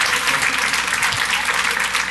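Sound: audience round of applause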